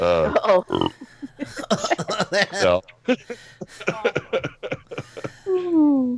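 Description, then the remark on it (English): A man talks on live radio, then lets out a low, drawn-out burp near the end, fairly loud, after a meal with peppers. “Rare burp on live radio from ….”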